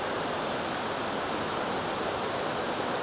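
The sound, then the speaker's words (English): A steady, even hiss of rain dripping through yew tree branches onto someone standing under the canopy beside old headstones, a dense continuous patter with no single drops standing out, unchanging throughout, with no voices. “The yew tree is dripping drops of water from the rain on my head.”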